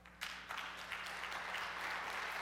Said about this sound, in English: That's like an opera clap. Sorry about that.